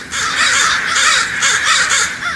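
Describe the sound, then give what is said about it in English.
Many crows caw at once in a loud, overlapping chorus of harsh calls, a dense continuous racket with no talking, as if a large flock is gathered. “Follow crows to their roost some autumn evening if you can, and watch these avian acrobats wheel in for the night.”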